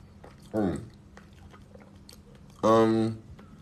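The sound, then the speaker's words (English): Faint chewing of small crunchy papaya seeds, with soft irregular clicks, interrupted by two short voiced grunts of reaction from the person eating. “Are papaya seeds good for you? Yes, they're very good for you. I don't like to chew them, like I said.”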